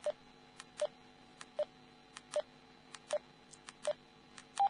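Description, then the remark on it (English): A radio keypad beeps as channels are stepped through: about seven short, identical mid-pitched beeps at a steady pace, each with faint key clicks between, ending on one noticeably higher beep when the first channel in the list is reached. “But when I reach the first channel in the list, it gives a high beep.”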